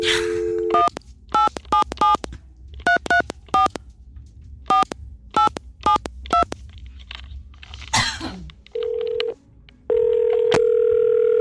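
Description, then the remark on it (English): A quick run of telephone keypad tones dialing a warranty processing company, then a cough, followed by a steady, loud busy signal tone that cuts off briefly and comes back on, with no talking. “Busy signal. Off to a great start.”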